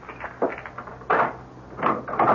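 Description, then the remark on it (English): A door is unlocked and opened with keys: a few short metallic clicks and rattles, then a louder clunk and creak as the door swings, with no voices. “Well, now, how many of your boyfriends have keys to...”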